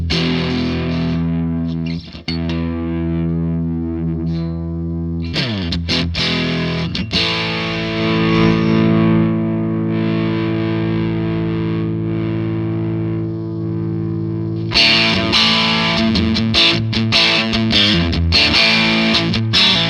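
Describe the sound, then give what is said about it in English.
A heavily overdriven electric guitar played through an overdrive pedal on its third, highest-gain setting plays sustained, gritty chords with a thick, buzzing saturated tone, pausing briefly before a brighter, fizzier burst of strummed distortion near the end. “one we started in, is obviously the grindiest and got the most gain on tap.”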